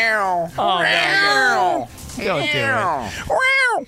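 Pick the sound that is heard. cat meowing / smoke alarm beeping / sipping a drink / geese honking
cat meowing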